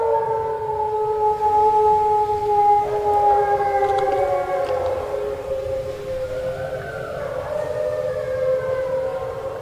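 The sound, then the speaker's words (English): Several wolves on a hillside at night howl together in a continuous chorus, joining in after a call-and-response howl, their long, wavering voices overlapping and sliding up and down in pitch over a low, steady rumble of background noise. “Despite the prodding, the wolves did not need much encouragement tonight.”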